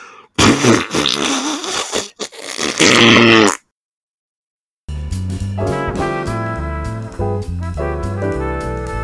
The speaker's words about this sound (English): That was supposed to be a fart. I don't know what that was. What the fuck was that? That came from my body. Is that a kazoo? That was all organic, as we say.